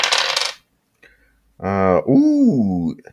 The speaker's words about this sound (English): I got a 6 and a 4 on the 2 dice I rolled, and plus 3 is 13.